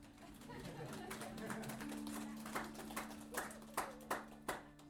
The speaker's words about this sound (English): Is it weird not clapping? Did you want to clap for yourself?